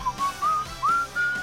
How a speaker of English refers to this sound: I'm just whistling